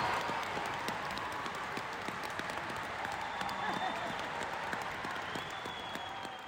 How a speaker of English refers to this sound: During this journey, the West Midlands side have gone from playing on a park pitch to playing at the War Memorial Stadium, with their supporters cheering them on.